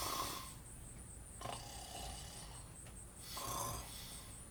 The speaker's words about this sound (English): Lazarus's exhaustion took hold and he quickly was snoring soundly